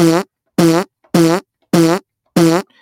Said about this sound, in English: This Ridge Racer here, I'm gonna give it, where's my fart button?